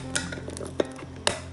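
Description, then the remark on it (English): Noodles that have been cooking for several minutes being stirred in a pot: three sharp metallic clinks of a utensil against the pot, irregularly spaced, over a steady low hum, with no talking. “Alright, so I'm gonna stir my noodles after I finish with this can.”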